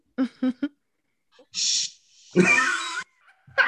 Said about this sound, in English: So, hear my dog barking? No. Stop barking at me. Silence, dog.